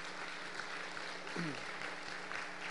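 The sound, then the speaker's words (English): An audience applauds steadily for guests who have stood up, a dense, even patter of many hands clapping that holds at a moderate level throughout, with a brief faint voice rising through it partway. “All right, why don't you guys stand up, and let's just give them a round of applause for being here.”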